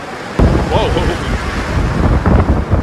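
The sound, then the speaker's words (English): A sudden, loud, massive gust of wind under clear skies slams into the microphone, producing a heavy low rumbling buffet that persists for a few seconds, with a brief muffled voice-like sound partway through. “Like, that was a massive gust of wind.”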